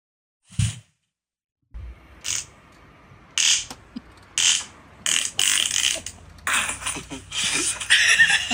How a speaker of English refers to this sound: I'm just looking for the fucking sound of when it goes. Because listen to this fart, everybody. One more time.